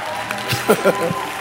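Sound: audience clapping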